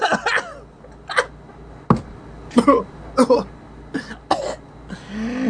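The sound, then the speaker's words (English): A series of harsh coughs in irregular bursts, about seven or eight sharp barks with a throaty edge, separated by short pauses over a low background hum. “He's still got death cough. But hey, the fatal illness of anime moms everywhere. I have a death cough.”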